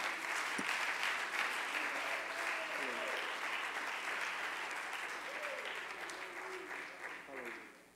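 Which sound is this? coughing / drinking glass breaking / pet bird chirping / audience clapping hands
audience clapping hands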